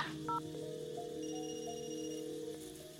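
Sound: telephone dialing tones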